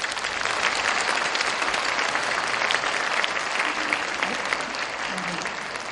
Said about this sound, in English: First, we are deeply grateful to welcome the Governor of Jeju Special Self-Governing Province, the Honorable Mr. Kim Tae-hwan. Please welcome him with your warmest applause.